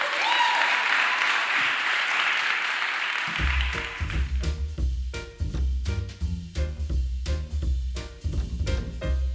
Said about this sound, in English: Thank you very much. Round of applause for this panel.